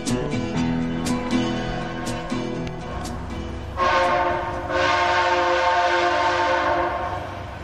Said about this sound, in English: Well, that's all you're going to get from that train.